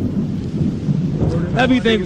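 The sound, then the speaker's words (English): Steady, heavy rain hisses throughout with a low thunderous rumble underneath, loud, and a brief voice-like tone rises near the end. “Yo, go get the f*** out the rain.”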